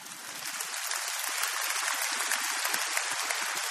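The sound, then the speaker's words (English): An audience claps for God steadily for a few seconds, a dense, crackling wash of many hands that swells slightly and holds at a fairly loud level, with no voices over it. “Yeah, you can clap God for that.”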